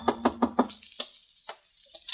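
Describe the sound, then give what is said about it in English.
Four quick, evenly spaced knocks on a door ring out firm, followed by a few softer, scattered thumps and rustles. “Well, this was my chance to collar him, only just then a knock came.”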